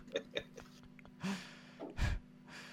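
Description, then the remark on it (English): A big, breathy yawn performed by a voice: a drawn-out airy inhale with a short voiced groan, ending in a low, heavier exhale. It is moderately loud, with a few small clicks before it. “Ah, she lets out a big yawn.”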